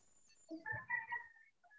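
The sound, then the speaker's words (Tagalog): A chicken clucks faintly in a short burst of about a second, a few nasal, warbling notes running together, with no talking over it. “Nakikipodcast yung manok.”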